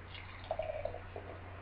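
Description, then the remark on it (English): Brainless Raspberries, a raspberry wild ale from Epic Brewing, pours from a can into a glass: a short, quiet gurgle and splash lasting under a second, set against a steady low background hum, with no talking. “And in the pour?”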